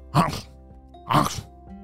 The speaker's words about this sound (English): He had now been sneezing for a very long time, and his boogery mess was now a ginormous disaster.